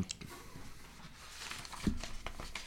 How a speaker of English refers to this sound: Turning pages.